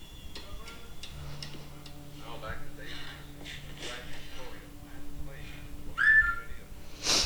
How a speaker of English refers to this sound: He whistled at her to come sit down.